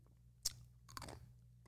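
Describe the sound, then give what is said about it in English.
Close-up crunching of ice being chewed right at the microphone: a sharp bite followed by a burst of brittle crackling crunches, loud and near, with no talking. “I can't chew ice in the microphone.”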